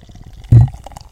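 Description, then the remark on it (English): On the Level IPA beer is poured into a small sample glass: a single short, heavy glug, followed by faint, scattered fizzing and light splashes. No one speaks. “So let's pour it into this little sample glass. I poured up a tiny sample. I'm going to pour my beer.”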